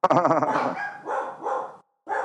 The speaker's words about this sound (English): Shit, sorry, there's my dog barking at something.